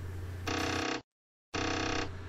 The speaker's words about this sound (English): And the sound of the 1541 drive banging tells us that the podcast has been successfully been transferred from reverse back to normal. It's amazing, the processing power of this 1 megahertz chip.